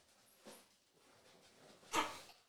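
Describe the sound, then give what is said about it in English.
A dog barks twice, a short, softer bark followed about a second and a half later by a sharper, louder one, heard fairly faintly with no talking. “Oh, you're barking a little bit too late, brother.”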